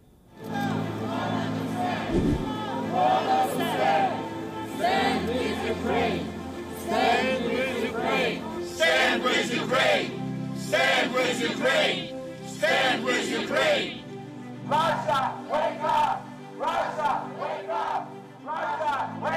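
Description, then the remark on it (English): A large anti-war protest crowd shouts and chants together in loud, rhythmic bursts of many voices, keeping up a steady roar for most of the time with a short lull before the chanting resumes. “There are anti-war protests around the world.”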